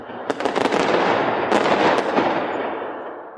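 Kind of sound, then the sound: sound effect, fireworks bursting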